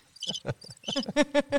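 A cricket chirping sound effect played from a sound button: a quick run of sharp, buzzy chirps in an uneven rhythm, fairly loud, with no voices.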